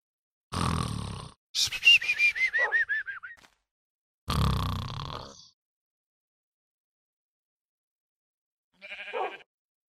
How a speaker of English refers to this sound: I couldn't get a clean woof there. The sheep kept sheeping over Wolfie's woof, but that one I'll take.